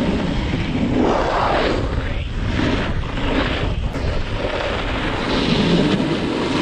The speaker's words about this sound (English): The loud scraping and crunching sound of a snowboard was unsettling for some skiers.